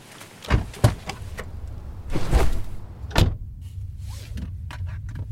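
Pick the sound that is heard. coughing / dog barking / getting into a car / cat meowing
getting into a car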